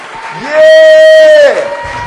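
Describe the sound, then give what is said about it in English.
A loud, drawn-out shout rises and holds for about a second over a steady wash of an audience clapping hands and shouting in praise to God, with a busy crowd sound continuing underneath before and after. “Come on, clap your hands, all you people. Shout unto God with the voice of triumph.”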